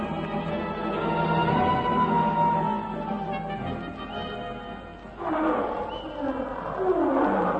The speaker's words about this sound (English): It was a lion, wasn't it? Yes. Wait till I reload my rifle. Do you think it was close to us? No, but it was ahead.